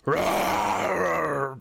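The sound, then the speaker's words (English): A voice imitates the huge roar of a big goblin that stands up and bellows, one sustained, loud, rough growling bellow lasting over a second with a strong low buzz before cutting off abruptly. “Huge roar.”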